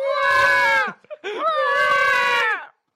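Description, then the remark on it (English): A voice imitates a sinking-submarine alarm with two loud, sustained, high-pitched wails. The second starts with a quick upward swoop before holding steady, separated from the first by a brief gap. “Babies are basically kind of like this submarine is sinking noise. What do you call that noise? Alarm.”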